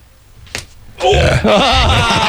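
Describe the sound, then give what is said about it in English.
A single sharp smack of a punch landing on a person's wristwatch, brief, followed about half a second later by a loud, drawn-out pained groan from a person. “I hit his watch.”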